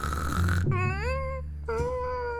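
A cartoonish snore: a rough, rumbling inhale followed by a descending whistled exhale, then the rumble starts again. Fairly loud and steady, with no talking.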